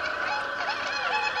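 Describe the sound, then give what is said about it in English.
A penguin's harsh, honking call runs continuously at steady loudness, with layered, wavering brays from several birds overlapping. “Penguin.”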